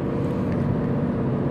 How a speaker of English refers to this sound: So, look at this Dodge Charger. This guy. He's got an unmarked vehicle. Virginia registration. Man, that's a sweet car, that Charger. That Dodge Charger is a beast.